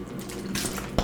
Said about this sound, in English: Yes, that was me drinking water. That was also me clanking it on my desk